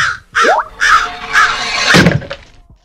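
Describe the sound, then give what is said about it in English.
A crow sound effect: four caws in quick succession, each call harsh, raspy and loud, with a heavier thump mixed in near the end. “Get that crow out for me.”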